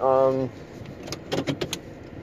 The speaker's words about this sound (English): Well, what's up, everybody? I'm in the car. I'm going to work.